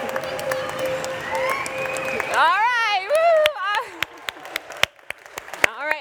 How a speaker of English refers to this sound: But can you, guys, give them one more round of applause.